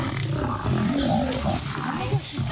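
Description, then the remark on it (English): Loud, continuous lion roaring and snarling as a lion pounces on and attacks a straggling buffalo, thick and rumbling, with rough growls rising and falling over about two and a half seconds, intense. “The one buffalo was a little bit slower than the rest, and so the lion jumps out and pounces and attacks that buffalo.”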